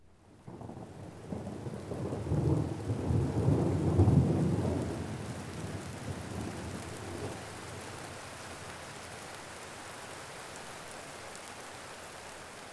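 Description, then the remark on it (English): A deep rolling thunderclap swells and fades over a few seconds, leaving a steady, dense wash of heavy rain hissing on alone as it falls on a forest bungalow. “Rain pounced on the forest bungalow. The large windows rattled whenever the loud cracks of thunder filled the air.”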